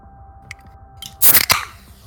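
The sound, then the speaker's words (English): A can of AHA black cherry and coffee sparkling water, made by the Coca-Cola company, snaps open with a sharp metallic crack, then a second pop releases a bright, loud hiss of fizz that quickly fades over a faint low background hum. “That almost sounded like it had like a nitro popper in it.”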